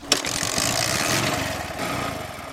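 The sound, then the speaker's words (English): A Bajaj Boxer motorcycle engine runs steadily, a rough, buzzing idle with a brief sharp knock at the start and no voices. “This motorcycle is called Bajaj Boxer.”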